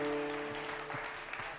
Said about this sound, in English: Hey, if you're here serving, yeah, clap for yourself.